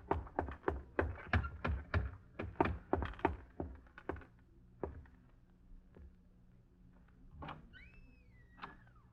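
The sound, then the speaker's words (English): A door closes in another room: a quick run of muffled thuds and clatters over the first few seconds, then quieter bumps and a faint, high squeak near the end. “And gradually feel better as you watch it go up in smoke, and then a door closes in the other room”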